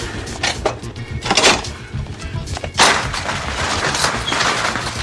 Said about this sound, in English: So, what you hear at the end of that thing is him putting a bar into the chain mechanism so that they can't raise up the door, and he shoves it down like hard, like he's, it's like a baseball bat that he's wedging into something